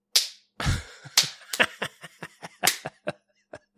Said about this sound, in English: It's just like a slap.